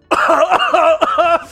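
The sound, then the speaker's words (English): A person vocally imitates coughing, producing three loud, rough, hacking bursts in quick succession, with no other talking. “What's he coughing up?”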